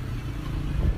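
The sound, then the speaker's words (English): Busy downtown Tehran, Iran street traffic with a steady low rumble of car engines, a motorbike-like drone rising slightly toward the end, loud, no voices. “Despite highways, dedicated bus lines, and efficient subway lines, downtown Tehran is still often jammed with cars and hijacked by smog.”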